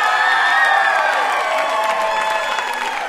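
A crowd at the quiz show Ask Me Another cheers and applauds the winner loudly and steadily for about three seconds, with overlapping whoops and shouts riding on a dense wash of clapping.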